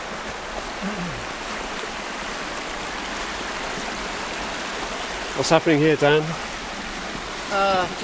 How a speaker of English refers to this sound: This is where the stream enters into the cave from the surface, but it doesn't actually go into Goat Church, it just goes into Pierre's Pot, which is a cave that's just over there.